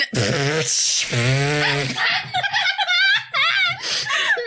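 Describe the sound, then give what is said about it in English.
Two loud, buzzy fart noises blown with the mouth at a horse camp, each lasting under a second, followed by several people giggling and laughing. “fart noise.”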